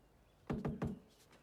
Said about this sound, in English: Knock again.